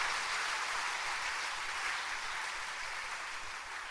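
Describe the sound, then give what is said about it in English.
A crowd claps for themselves after reading Romans chapter 1, verse 16 aloud, a dense, even wash of many hands with no distinct individual claps, holding at a constant level throughout with no voices over it. “Clap for yourselves.”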